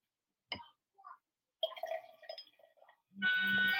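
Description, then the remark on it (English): Prosecco fizzing and settling in a glass: a sharp glassy clink and scattered light clatter, then a loud, steady rush of bubbling fizz that fills the final half second. “I hear it. I know, right? It's picking it up. It's settling right now.”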